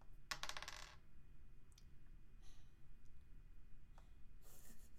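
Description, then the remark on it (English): A quick burst of dice clattering and rattling onto a hard table surface, followed by a few scattered lighter taps and a final rattle, fairly clear with no voices. “you would reduce your dice pool by one, so then that's I roll no one dice.”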